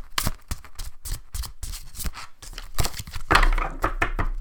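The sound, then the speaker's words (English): A Witch's Kitchen Oracle deck of cards with silver edging being shuffled: a quick run of crisp, papery flicks and riffles in an uneven rhythm, ending in a denser, louder flutter of rustling. “Let's give her a little shuffle.”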